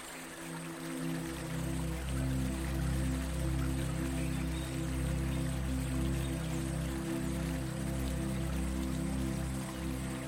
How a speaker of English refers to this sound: Welcome to the Amazon rainforest. It's divided by the longest river in the world, which surges across more than 6,000 kilometers of the South American continent. In the rainforest, there's a constant buzz in the humid air.